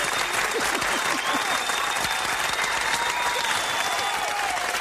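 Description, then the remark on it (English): Steady, full audience applause for two guests on a talk show, with dense overlapping claps, loud and sustained throughout, with faint crowd murmurs and a few higher whoops mixed in. “can we just give them a big round of applause and thank them so much for being here?”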